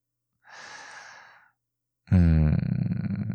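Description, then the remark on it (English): A long, heavy breath out, then after a short pause a loud, strained, voiced gasp. The breathing is labored and sounds like it comes from exertion, with no talking. “Look at you panting.”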